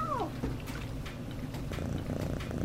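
A cat named BB gives a short, falling meow right at the start, then settles into a steady purr that rumbles continuously to the end as she is scratched behind her ears after being caught under a laundry basket, with no talking.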